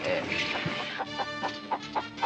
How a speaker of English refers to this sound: Yes, these hens have been fed a straight diet of onions for the past 6 months.